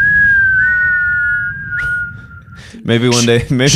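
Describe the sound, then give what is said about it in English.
Someone attempting to whistle produces a single thin, sustained note that wavers slightly in pitch for about two and a half seconds, then a voice breaks in with loud talking or laughter. “I still can't go because I can't whistle.”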